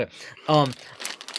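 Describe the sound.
Dice clatter and click together in a quick, busy rattle as a player handles a dice pool during a tabletop game, moderately loud, with a brief voiced sound from someone partway through.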